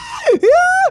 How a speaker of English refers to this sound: Almost as if tortured souls are the fuel behind this attack as it hits the ground and it messes with you. You can hear people screaming and crying and begging for help. And it's just this awful, awful, like, dread that floats over you.